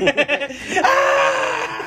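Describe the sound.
A few quick, breathy laugh-like bursts give way to a sustained, strained scream held steadily for over a second, a person voicing a continuous shriek.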